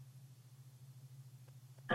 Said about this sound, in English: Oh, no, the hum? There's a hum? That's my cheap China VFD.